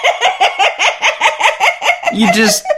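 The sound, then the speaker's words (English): A person imitates a goat's yell with a quick run of about nine rhythmic, bleating vocal pulses, ending in a longer, wavering, strained cry. “You do a goat yell. Wah!”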